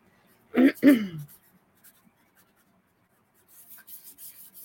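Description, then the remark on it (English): Faint pen scratching on paper in a few quick strokes near the end as a name is written down, following a brief, loud wordless vocal sound at the start and a stretch of near silence. “Let's get your name down there.”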